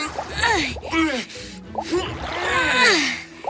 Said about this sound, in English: Speaking of effort, my arms are ready for more magnet fishing. Awesome. Let's drag that magnet through the water.